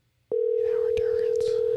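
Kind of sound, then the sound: signal or alarm, telephone call ringing tone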